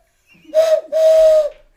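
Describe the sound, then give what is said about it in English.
Someone whistles two breathy blasts in imitation of a steam train whistle, a short hoot followed by a longer, steady one, both on the same mid-pitched tone with a loud airy hiss. “That's like a steam train.”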